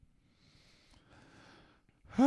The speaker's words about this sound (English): Oh, I don't know if you guys could hear me breathing hard enough, but here we go.